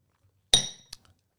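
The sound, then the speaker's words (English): Glasses clink together in a toast: one bright, ringing chime that slowly fades, followed by a smaller tap and a couple of faint clicks. Clear, with no one talking. “Cheers. Cheers. Cheers. Salute.”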